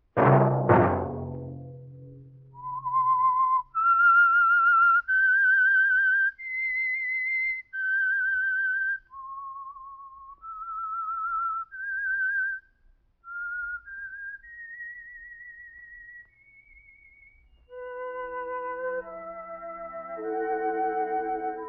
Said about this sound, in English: That whistle be your signal for the Signal Oil program, The Whistler.